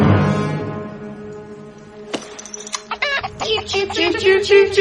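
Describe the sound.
A voice imitates a chicken, starting with a drawn-out low tone and then breaking into a quick run of loud, jerky clucks and squawks that grow busier toward the end.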